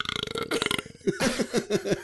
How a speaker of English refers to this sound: That was a really good burp. Sound like a lizard.